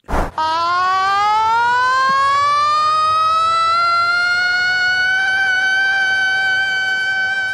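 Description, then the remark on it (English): A man's voice wails in a long, rising siren-like scream, held loud and steady for several seconds after a brief sharp onset, convincingly imitating an emergency siren, heard in the background at a cricket game in Hobart. “That's a bloke screaming like a siren.”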